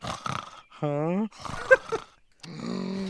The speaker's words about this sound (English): Are you snoring while you're awake?